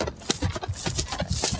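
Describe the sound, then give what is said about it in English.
Hooves of a Canadian horse, a stocky, muscular riding and driving horse, clip-clop in a steady, quick rhythm, each hoof strike sharp against a hard surface, with no voices present. “That's the clippity-clop of Le Cheval Canadien, or the Canadian horse.”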